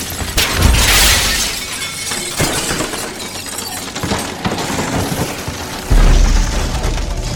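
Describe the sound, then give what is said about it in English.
A loud crash of many cafeteria windows shattering together, followed by a long spill of breaking, tinkling shards and a second heavy burst near the end, with no voices. “All the windows throughout the cafeteria shattered at once as feral creatures swarmed us.”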